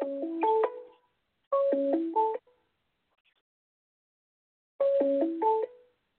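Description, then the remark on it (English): A telephone signal tone coming through the station's phone, a quick electronic melody of stepping pitches, plays three times with pauses between, clear and fairly loud with no voices. “That was a phone thing coming through the station's phone.”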